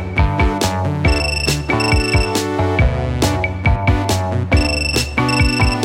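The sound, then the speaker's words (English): A phone rings with a loud, melodic electronic ringtone, bright synth notes over a steady thumping beat, playing continuously with no voices. “Sorry I missed your call. Leave a message at the beep.”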